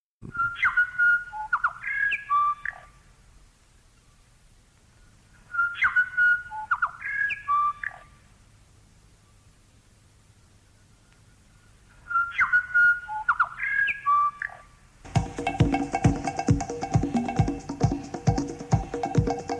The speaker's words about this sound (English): Radio New Zealand International, broadcasting sounds of the South Pacific. That was Radio New Zealand International with its song of the bellbird.